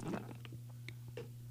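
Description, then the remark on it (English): Soft mouth noises of someone sipping coffee: a few brief wet slurps and a swallow over a low steady electrical hum, with no talking. “I took a sip of coffee.”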